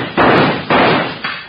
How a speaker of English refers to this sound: Hey, this looks like a lock. Here you are. Hey, it is a lock. Right. Stand back. I'll shoot it off.